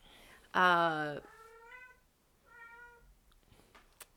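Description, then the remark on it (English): A cat lets out one loud, drawn-out meow, followed by two softer, shorter meows with brief pauses between them. “It's okay, we know Link there's cats.”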